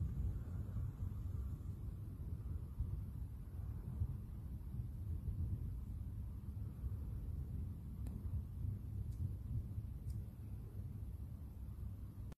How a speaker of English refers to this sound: So that is a video of some of the thunderstorms that happened in Preston a couple of nights ago.